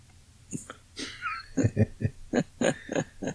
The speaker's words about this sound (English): A squeaky chair.